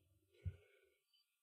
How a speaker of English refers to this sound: Edit that yawn out.